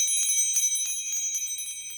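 Bells ringing in a bright, rapid cluster of overlapping strikes, their high tones shimmering and sustaining steadily throughout, fairly loud and clear with no voices.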